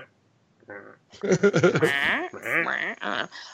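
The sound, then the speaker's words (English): A person's voice mimics a goat, letting out a run of quavering, wavering bleats, fairly loud, the trembling cries rising and falling for a couple of seconds. “Did you just make a goat sound?”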